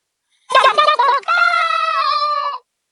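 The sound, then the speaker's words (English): A man's voice imitates a chicken, evoking the radio character Chicken Man, with a few quick choppy clucks followed by a long, drawn-out squawk. Fairly loud, with no other sound around it. “He's everywhere. Chicken Man. That's it.”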